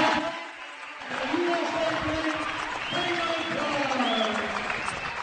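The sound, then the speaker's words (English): A large audience claps steadily for several seconds, a dense, sustained wash of applause, with an amplified voice and crowd murmur mixed underneath; the applause is a round for McDonald's, sponsor of the 2020 McDonald's All-American Games. “How about one more big round of applause for McDonald's?”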